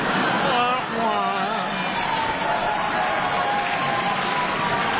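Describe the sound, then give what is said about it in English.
An audience at a Hall of Fame induction speech applauds steadily, the clapping dense and continuous throughout, with scattered whoops and cheering voices rising above it near the start. “Really, listen to the while applause.”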